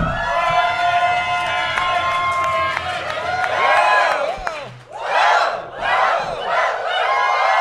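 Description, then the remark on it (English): A large live crowd yells and cheers loudly, a dense roar of overlapping voices that dips briefly and then surges again in rising waves of whooping. “No, I was going to pick him up and see if you guys yelled louder.”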